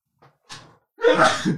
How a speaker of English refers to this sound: Oh, there you go. That's a bit embarrassing. A live sneeze. there you go. Live television.